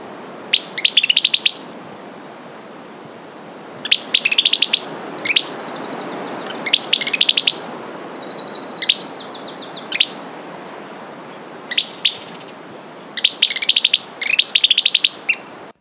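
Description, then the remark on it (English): A Western Kingbird's squeaky, sputtering calls come in several bright bursts, with short pauses between them. The bird sounds fairly loud over a soft background hiss, and no one speaks. “Or you may hear this bird's squeaky call.”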